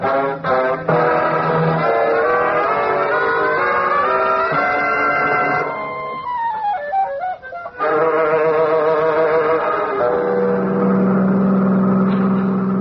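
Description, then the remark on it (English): A car engine revs loudly and steadily, its pitch climbing and dipping as the car drives off down a drive, with no talking over the sound. “A car just went down the other drive.”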